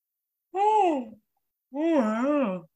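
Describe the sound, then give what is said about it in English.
A drawn-out yawn in two voiced stretches, each swooping up and down in pitch like a groaning sigh, with a short pause between them and no talking. “You should keep that yawn and don't edit that out.”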